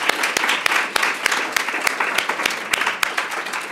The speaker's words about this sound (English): Great. Well, I just want to ask everybody to give our panel a big round of applause. Thank you all so much.